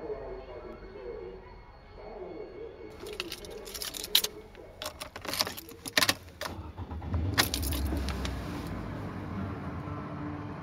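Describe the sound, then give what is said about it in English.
Someone getting into a car: keys jangle and clink in a cluster of sharp rustles and knocks, with a door thud, over a low steady rumble that swells toward the end. “The moment I get in the car, I start commenting on what I remember, like automatically, like on cue.”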